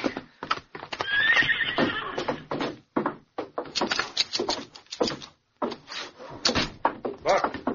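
A horse whinnies loudly while hooves clip-clop in an uneven rhythm as a man is told to get up on it, with scattered knocks and thumps throughout.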